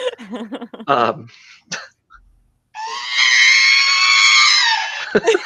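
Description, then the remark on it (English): A robot droid lets out a long, loud, wavering electronic scream lasting a couple of seconds, preceded by a few short chirpy warbles and ending in a sharp burst. “This sound I'm about to play for you, which is his scream, is actually, and I never have my phone volume on, so it scares me every time when it is on, is my ringtone for when someone texts me.”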